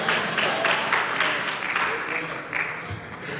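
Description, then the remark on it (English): A steady run of hand claps by one man during a sermon, sharp and fairly evenly spaced, repeating for several seconds over a continuous murmur of background noise and faint voices. “Thank you for the one brother who clapped his hand.”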